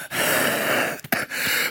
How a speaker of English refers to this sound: I'm like hacking up, coughing, wheezing.